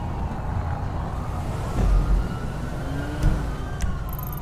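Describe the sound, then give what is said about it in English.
Police sirens wail in rising and falling sweeps over a steady rumble of traffic and engine noise, with no one speaking. “I can hear your sirens all the way over from Rockford Plaza.”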